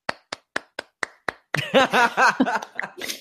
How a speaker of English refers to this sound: Killed me. Those two just applauding.